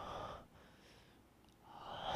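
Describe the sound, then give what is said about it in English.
A voice imitates heavy, raspy breathing into a phone, as in a SpongeBob prank call scene: a loud inhale, a quieter pause, then another strong breath building at the end, breathy with no words spoken. “Yeah, and it's just breathing.”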